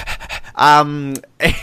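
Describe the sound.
Heavy panting breaths up close: a few quick, rhythmic gasps, then a long, loud, strained voiced exhale and one more sharp breath.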